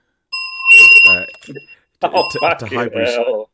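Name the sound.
bell ringing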